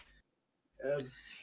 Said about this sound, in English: sneeze. Bless you. Thank you.